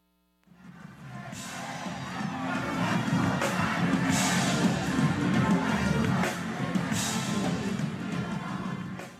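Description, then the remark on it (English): A steady roar of noise from a packed concert crowd of Northwestern students and alumni at Northwestern's Dillo Day in 2014 holds at a constant level, with the low hum of the backstage running underneath the mix of voices and occasional brighter bursts. “Between the crowd noise and the hum of the backstage, it might be a little difficult to make out, but that was”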